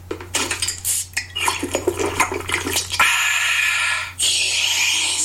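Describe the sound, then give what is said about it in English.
A Coca-Cola is prepared: a run of sharp glassy clinks, like ice dropping into a glass, then a steady loud rush of pouring and carbonated hiss as the Coke fills the glass. No one speaks. “That wasn't sound effects. That was a Coke.”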